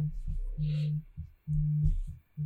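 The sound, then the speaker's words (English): A mobile phone vibrates with an incoming call from Adrian, Michigan, its low, droning buzz coming in repeated bursts, longer pulses separated by short gaps, fairly loud. “what's vibrating? I'm getting a phone call from Adrian, Michigan.”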